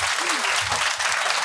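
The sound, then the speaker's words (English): A steady burst of audience applause, dense clapping filling the whole moment at an even, loud level, with a faint murmur of voices underneath. “Okay, so by round of applause, who has never fucking seen this object in their lives?”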